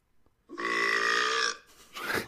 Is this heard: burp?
yes